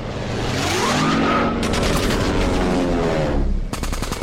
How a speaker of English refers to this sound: Laying aside all thoughts of personal safety, he dove into the formation of Japanese planes. Wing-mounted 50 calibers blazed as he charged in, attacking one surprise enemy plane and then another.